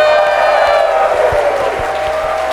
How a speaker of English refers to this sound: Anyway, you both won. Round of applause.